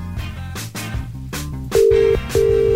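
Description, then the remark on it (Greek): A song with a steady beat plays, then two long, loud electronic tones sound in a row with a short gap between them, like a phone ringing out on a call that goes unanswered. “Πάμε να καλέσουμε”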